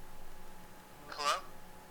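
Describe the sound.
A phone line breaking up: mostly faint static hiss, with one short, distorted burst of garbled voice that cuts in and drops out again almost immediately.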